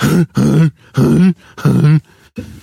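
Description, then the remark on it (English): A voice imitates whooping cough: five loud, rhythmic, throaty bursts in quick succession, each a strained, groaning hack with a drawn-out vocal tone. “Actually, whooping cough has a weird sound, right? It's like a”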